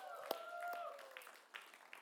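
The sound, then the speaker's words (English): Scattered audience applause for the worship band, fairly faint, with individual claps popping out irregularly over a soft sustained tone and some background voice. “Can we give the worship band a round of applause, please?”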